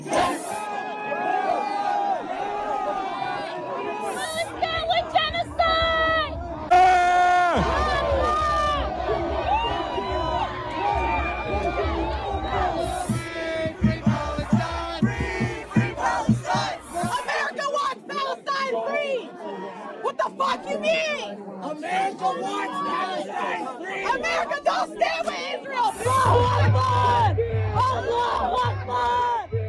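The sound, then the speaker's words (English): A large protest crowd at the White House on a Saturday night, some trying to scale its fence, chants "Allahu Akbar" and "Genocide Joe" in unison, loud, with overlapping shouts, yells and bursts of cheering running continuously throughout. “I'm sorry, but there's something chilling about hearing that call, which the 9/11 terrorists yeah. were screaming as they flew those planes into the Trade Center right outside of our White House, seeing our White House within steps of these fanatics”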